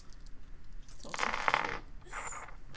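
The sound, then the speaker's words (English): Dice clatter across a hard table in a sharp rattling burst, followed by a shorter second tumble of clicks, moderately loud, with no talking. “Because this guy rolled no successes. Because wow! he only had three dice and was taken completely by surprise.”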